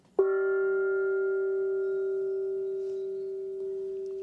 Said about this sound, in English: Can I still ring the gong? Okay, let's do it.